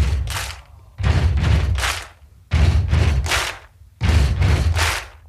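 Loud, heavy stomping and sharp clapping in a steady, repeating stomp-stomp-clap rhythm, made by a small group of people in a recording studio, with no voices.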